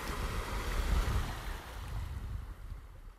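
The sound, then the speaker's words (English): Sea waves wash onto a shore by woods, under moonlight, in a steady, rushing roar with a deep low rumble, swelling slightly then easing. No one speaks. “walking in the woods by the sea with Meg and watching the moonbeams dazzle on the waves”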